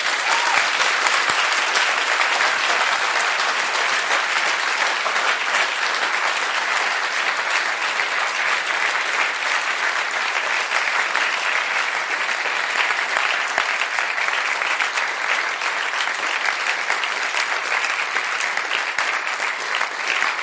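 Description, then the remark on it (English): A church audience gives a hand clap offering to Jesus, applauding steadily for about twenty seconds, a dense, even wash of many hands clapping at a constant loud level with no voices standing out. “Give Jesus a hand clap offering.”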